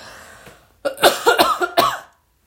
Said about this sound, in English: I've been trying to fight coughing this entire episode, because I don't know about, do y'all do this? Like when you hear someone hacking up a lung now, you're in the back of your head. I know all of you are thinking they have the corona.